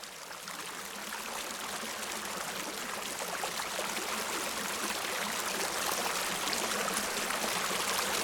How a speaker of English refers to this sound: This is the sound of a rainstorm on my house near the river during the rainiest season ever on record in Los Angeles. It was 2005.